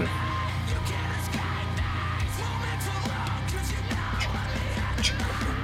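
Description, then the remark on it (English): A raw, strained vocal scream rides over dense, distorted heavy rock, with pounding drums and thick low-end guitars filling the mix at a steady, loud level throughout. “The scream in there.”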